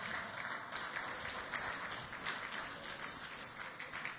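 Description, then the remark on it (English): A church audience breaks into sustained applause, a dense, steady wash of many hands clapping at once with no voices standing out, holding a fairly even loudness for several seconds. “If you are not jealous, please clap.”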